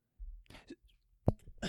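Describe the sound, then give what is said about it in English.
A soft, muffled sneeze: a sharp burst followed by a brief breathy hiss, set among quiet breaths and faint murmuring. “Bless you.”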